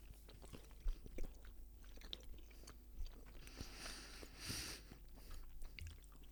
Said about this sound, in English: Too much chewing. Mm. Too much. Ouch in the teeth.